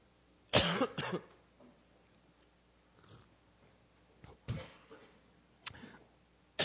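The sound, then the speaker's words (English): A preacher coughs during a sermon in a few separate bursts: a loud double cough at the start, then softer, scattered coughs and a throat-clearing sound spaced out over several seconds. “Excuse me. I'm still coughing, but I feel better.”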